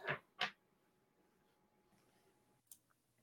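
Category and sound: household object, dice being rolled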